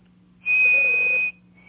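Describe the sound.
A person whistles an imitation of a chickadee call: one clear, steady high note held for nearly a second, then a second slightly lower note begins. No one speaks.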